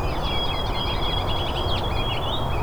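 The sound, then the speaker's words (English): A white-throated sparrow's song, a thin sustained whistle with quick chirpy notes around it, rises above a heavy, steady rumble of background noise for the whole stretch. “So the really melodic one is the white-throated sparrow.”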